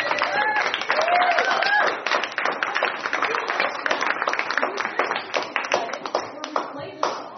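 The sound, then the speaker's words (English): A live audience at the Dork Forest show, taped live at the Nerd Melt, applauds steadily for several seconds, a dense, even patter of many hands clapping, with a few voices whooping and cheering in the first couple of seconds. “Let's clap it up for that.”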